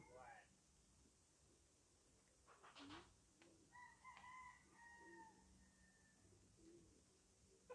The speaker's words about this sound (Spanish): Pajaritos.